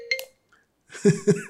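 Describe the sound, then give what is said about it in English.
A cell phone ringtone plays: a short electronic tone, a brief pause, then a bright, repeating melodic chime pulsing in quick rhythm with no voices. “Silence your cell phone, please.”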